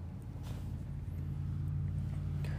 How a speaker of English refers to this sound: I'm just driving around in a tow truck. Well, it's a fire truck and a giant tow truck. The snow is on the ground.